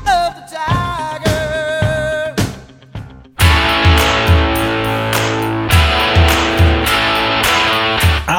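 Sharp hand claps punctuate a ringing guitar riff at a steady rock tempo, then the full band crashes in loud and distorted with heavy, driving drums.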